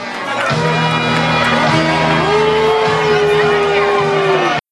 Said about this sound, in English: Somebody yells, "Beat it," and then the crowd starts to boo.